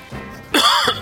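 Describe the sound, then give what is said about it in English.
A single loud cough bursts out after a brief quiet moment, harsh and throaty with a short raspy tail, and no talking around it. “Excuse me. I had a cough there.”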